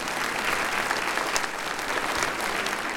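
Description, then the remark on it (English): A crowd claps steadily for the people in orange vests who helped with parking, a dense wash of many hands with scattered sharper claps standing out, sustained at an even loudness for the whole stretch. “Give them a big round of applause, yes.”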